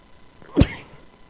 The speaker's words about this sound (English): Wow, thank you for the Gesundheit.